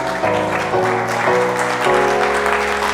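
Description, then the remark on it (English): A church audience, standing, claps for the Lord at a morning service, steadily and loudly in a dense, continuous wash of hand claps, while sustained keyboard chords shift underneath every half second or so. No one speaks. “Can you give the Lord a hand clap this morning?”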